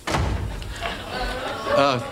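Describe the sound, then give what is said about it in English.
A door bangs shut near the start with a sharp, heavy thud as someone comes home, followed by room noise and a voice speaking briefly toward the end. “Oh, the door.”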